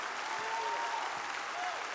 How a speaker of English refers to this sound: Thanks be unto God, He chose us. We did not choose Him. Clap your hands and praise Him for that.